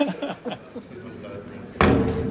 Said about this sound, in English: I'm just going to open this door, and I'm going to take you into the main galleries where we're currently installing our exhibition that's called A Joy Forever.